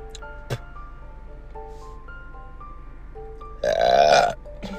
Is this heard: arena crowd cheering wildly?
no